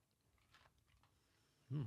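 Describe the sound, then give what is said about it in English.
Quiet chewing on a green hard candy: a few soft, crackly crunches in the first second, then a short, loud, low-pitched murmur near the end. “Careful with the chewing on here, just like, you know.”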